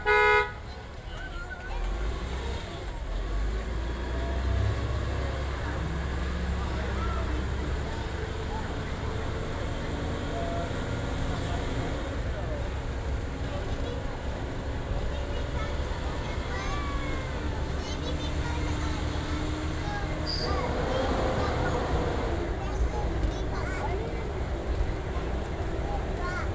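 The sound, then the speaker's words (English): A tour tram pulls away, its low motor drone climbing in pitch before settling into a steady, loud rumble of driving, with murmuring voices and an occasional horn-like toot. “Ladies and gentlemen, our tram is ready to depart.”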